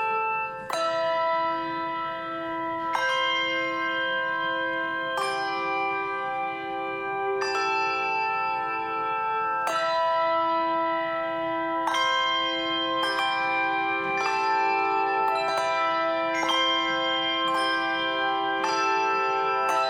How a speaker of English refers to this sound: This morning, we will hear a similar call with the bells ringing alongside of Psalm 27 as our call to worship. Let us be called ultimately by God into this space together.